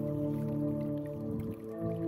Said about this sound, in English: Okay, so this is a hydraulophone, underwater pipe organ.